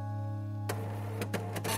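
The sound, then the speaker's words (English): A dot matrix printer hums steadily, then breaks into bursts of harsh, rasping print-head chatter, each pass a short buzzing strike repeated several times, fairly loud. “But as anyone who has ever had to use a dot matrix printer knows, those machines were far from perfect. They were slow, they were noisy, and the print quality was decidedly low resolution.”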